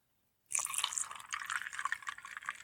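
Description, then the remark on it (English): Pendleton whiskey is poured steadily and heavily into a glass over ice, a continuous gurgling splash with bright clinks and crackles as it hits the rocks, starting abruptly and running for a couple of seconds until the glass is full. “Because I'm trying to get you to hear it hit the rocks, and before you know it, my glass is full.”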